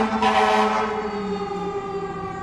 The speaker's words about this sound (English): just in time for all y'all to listen to this fire truck going by on Columbia Pike.